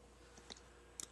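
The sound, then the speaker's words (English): Several quiet, crisp keyboard clicks tap out in an uneven rhythm, a few isolated keystrokes and a quick double tap near the end, against faint background hiss with no talking. “Yeah, we can hear you typing.”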